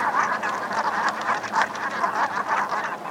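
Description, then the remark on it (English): A flock of Brant geese calling at once in a dense, continuous chorus of low, grunting, growly honks, overlapping with no pauses, fairly loud, with no voices present. “And so here's a, I think this is a call from a flock of Brant.”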